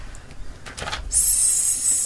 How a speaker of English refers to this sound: Somebody fix that door. That door's bothering